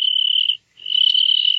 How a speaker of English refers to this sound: he's just a little cricket, and he's not hurting you.